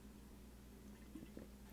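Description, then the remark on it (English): Two quick, soft gulps of drinking water over a low steady hum, with no talking. “I need water, hang on.”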